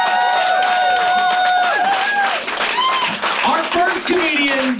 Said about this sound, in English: Everyone, let's give a big round of applause for right here being alive in March. Come on, clap it up.